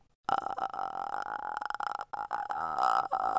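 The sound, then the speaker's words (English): A person makes a creepy clicking, rattling noise with the mouth and throat, sustained for about three seconds with a brief break near the end. It is loud and buzzy, with no talking. “We would freak each other out because we could do the noise clicking.”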